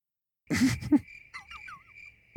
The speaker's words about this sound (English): Crickets. Crickets.